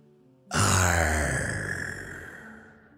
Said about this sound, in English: Relax all the muscles in our bodies. And take three deep breaths as big as the ocean. In.